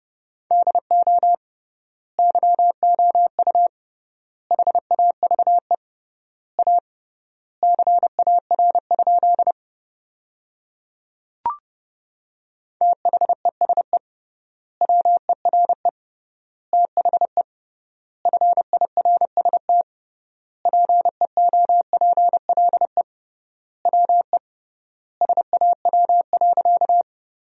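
Rapid Morse code tones at about 30 words per minute sending sentences built from the top 300 words with triple word spacing: a steady mid-pitched beep keyed into quick bursts of dots and dashes, separated by wide pauses between words, with a single faint click midway.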